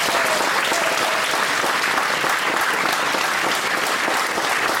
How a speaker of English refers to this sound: So can we just thank Hanbrook with a great big round of applause?